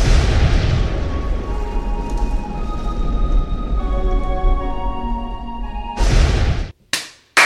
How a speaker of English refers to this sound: So the clap signifies the start of an episode.